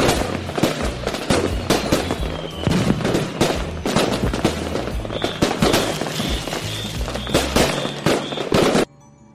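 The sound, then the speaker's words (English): A dense barrage of fireworks, lit by the speaker, crackles and bangs nonstop, loud, with rapid overlapping pops and a thin whistling tone partway through, then cuts off abruptly near the end. “I'm going to light the fireworks.”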